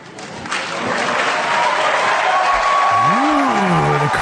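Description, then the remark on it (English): A crowd at an event with Secretary Clinton bursts into loud, sustained cheering and applause after a question about white privilege. The cheering swells within the first half second and holds steady, with a rising and falling whoop sounding through the noise near the end. “The crowd loves it.”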